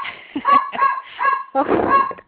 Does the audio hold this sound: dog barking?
yes